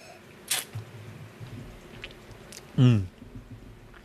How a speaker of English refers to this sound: I'm gonna take a sip of this really quick though, to chase down my shot of gin.